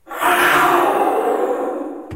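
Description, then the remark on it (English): A voice roars into a conch shell to imitate a jaguar: one loud, raspy, resonant growl lasting about two seconds, tapering slightly before it cuts off abruptly. “Wow, so that was through a conch shell, that roar noise.”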